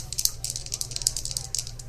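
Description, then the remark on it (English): Dice rattle and clatter as a player rolls for something, a quick, uneven run of bright clicks lasting a couple of seconds, with a low steady hum underneath. “He wants to roll for something. He's looking at his dice.”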